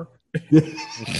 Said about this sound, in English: Gesundheit.